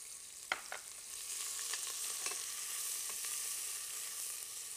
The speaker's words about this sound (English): Okay, now the onions are frying up really good. We just want to start to get a little brown on them on the edges. And we'll take it to the next step from there.